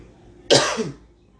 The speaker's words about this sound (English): Clear my throat.